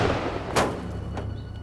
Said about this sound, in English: Did she just blow up a drone? I think so. With her stinking mind? I think so.